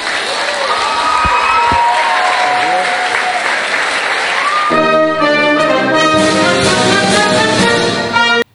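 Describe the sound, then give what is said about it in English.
A crowd at a gun control safer community summit claps and cheers loudly and continuously after a speaker signs off with "God save the queen, man", with whoops and shouts rising above dense applause that builds in intensity before cutting off abruptly at the end. “And what idiots are actually clapping like, woo, that's so great.”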